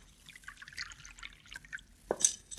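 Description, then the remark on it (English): Water trickles and splashes faintly into a glass in small, uneven drips as a drink of water is poured, followed by a brief brighter clink near the end. No one speaks. “Yeah, I'll get you a drink of water, senorita.”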